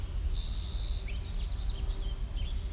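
A song sparrow sings a single phrase: a clear, high whistled note, then a quick run of trilled notes and a few closing chirps, over a steady low outdoor rumble.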